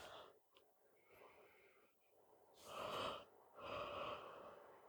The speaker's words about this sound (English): Maybe they can just hear the faint, like, ethereal, wispy sound of a yawn exhaling.